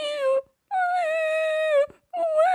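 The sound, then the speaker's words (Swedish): Three long, tonal whistling calls recorded underwater from a young orca separated from its family pod and unable to find its way back, each a steady high-pitched wail with rich harmonics, separated by short silences; the middle call is longest and droops slightly at the end. “Det var ett program om späckhuggare och då blir det var en liten späckhuggare som blev åtskild från sin familj, sin flock, och kunde inte hitta tillbaka och sände ut signaler.”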